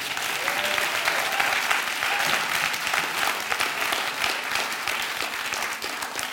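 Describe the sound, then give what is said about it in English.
A church audience bursts into sustained applause for Jesus during a sermon, dense overlapping claps at a steady, loud level for several seconds with no speech over it. “Clap for Jesus.”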